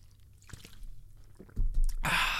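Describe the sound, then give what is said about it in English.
Someone drinking water: quiet, wet sipping and swallowing sounds for about two seconds, ending in a loud, breathy exhale. No one speaks. “So I'll just drink water and I'll tell you about the first one.”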